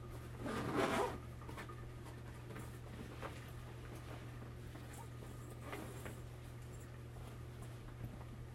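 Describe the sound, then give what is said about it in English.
A single quick zipper pull near the start, fairly loud, as one pocket of a very small duffel bag is zipped up, followed by soft rustling and small clicks of fabric handling against a steady low hum. “I'm going to zip this one pocket up.”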